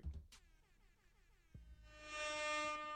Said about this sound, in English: Let me make sure this is good though. I'm trying to hear something, but let me test this air horn.